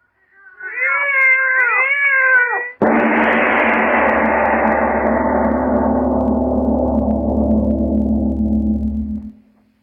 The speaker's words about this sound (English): Lorna, listen to them. They're not ordinary cats. Listen to them.